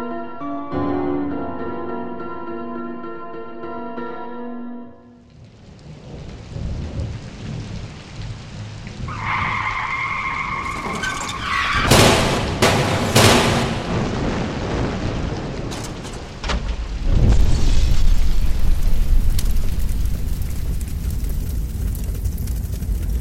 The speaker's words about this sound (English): You have been in a terrible car crash.